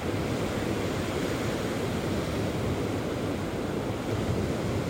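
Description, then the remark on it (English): A steady, full roar of ocean surf washes continuously, with no clear pauses between waves. It stays at an even, moderate loudness and no one speaks. “And as you release that last big deep exhale, feel yourself surrendering to the majesty, the infinite unknown of the sea.”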